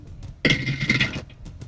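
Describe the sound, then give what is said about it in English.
Dice clatter down through a dice tower in one busy, rattling burst lasting under a second, then the noise drops away to a few faint ticks. No one speaks. “The sound that Dice Tower makes is about as sound as satisfying as like wobbling all laminated right. paper.”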